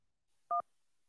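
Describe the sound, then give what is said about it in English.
A single short telephone keypad tone signalling an incoming call on a phone line, a clean two-pitch electronic beep that sounds once, loud and clear, surrounded by near silence with no talking. “Ooh, let's jump to the phone lines here.”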